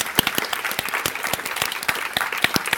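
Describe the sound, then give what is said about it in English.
An audience applauds for Dan and the music, a dense patter of many hands clapping at once with sharp individual claps standing out, sustained at an even, moderately loud level throughout. “And can we have another clap for Dan and the music, please?”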